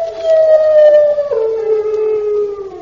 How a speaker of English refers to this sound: Permission to whisper, sir. There's something horrible about. Only a dog. Come on. That's no ordinary dog. It's a hound.